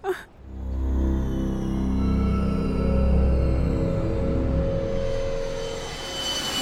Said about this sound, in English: Meanwhile, 40,000 feet above sea level, a Bombardier Challenger 300 executive jet raced through the skies of South China.